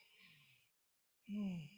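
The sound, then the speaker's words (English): An audible breath drawn in, a brief pause of silence, then a long exhale that turns into a voiced, sighing release. No words are spoken. “Taking a deep breath helps to reset the moment and revitalize us.”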